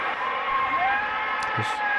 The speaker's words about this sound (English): Crowd going absolutely bananas for the king here.